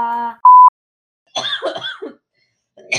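A short electronic beep, then a woman's raspy bout of coughing with a few throaty hacks, followed by silence and another brief cough-like burst at the end.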